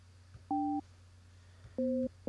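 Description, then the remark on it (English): Two short electronic dual-pitch beeps, each a different tone, with a third starting as it ends, from buttons pushed on an 80s-style touch-button phone to place a call, over a low steady hum. “Use your 80s phone and push those buttons.”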